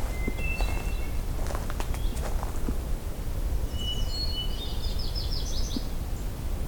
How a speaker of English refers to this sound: Turning here a blue-headed warbler.